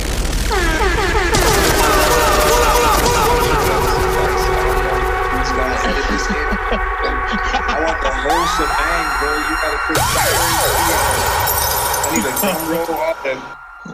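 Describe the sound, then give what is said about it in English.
Loud, blaring air horn sound effects sound in stacked, overlapping blasts for about fourteen seconds, mixed with bursts of rapid popping and whooping that keep the whole stretch dense and busy. “Can we get those air horns, man?”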